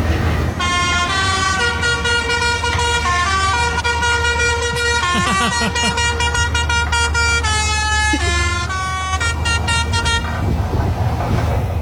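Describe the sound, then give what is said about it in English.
A snowplow horn blares in loud, harmonically rich blasts, beeping repeatedly over about ten seconds with shifting pitches and short breaks, above a steady low engine rumble, outdoors in Canada at minus 13 degrees. “Are you hearing the beeps, or is it silent for you too?”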